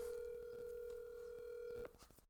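A phone dialing out to call Lincoln, who does not answer: a steady, fairly loud telephone tone holds for nearly two seconds, then cuts off abruptly, leaving a few faint clicks and rustles.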